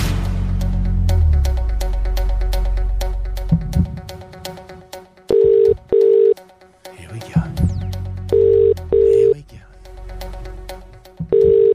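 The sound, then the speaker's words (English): An outgoing phone call from The Rock radio station to a listener: quick dialing clicks under a voice, then the steady double-burst ringback tone repeats three times, loud, with a voice briefly speaking between rings. “we could be calling you right now.”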